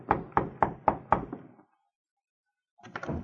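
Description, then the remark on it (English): Two Mounties knock on a hotel room door at the Victoria Hotel: five firm, evenly spaced knocks on a wooden door, fairly loud, followed by a pause of silence and then a brief muffled sound. “A short time later, the two Mounties arrived at the Victoria Hotel and knocked on the door”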